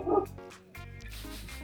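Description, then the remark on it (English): A dog barks several times in quick succession, loud, with a sharp first bark followed by a couple of longer, strained barks, and no one talking. “That barking ain't helping”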